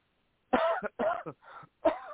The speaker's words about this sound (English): And this illness I'm suffering, I do apologize to our listeners that I am feeling a little under the weather, and if you hear coughing every now and then, I'll try and mute that so you can't hear that.